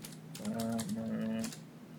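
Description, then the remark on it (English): Rapid, uneven clicking of keys on a computer keyboard, with a steady low hum rising beneath the taps for a moment before fading out. “I can hear your little typing, but it's fine.”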